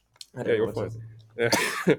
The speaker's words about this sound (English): if you need to just pause and cough